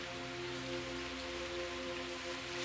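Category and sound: nature, heavy rain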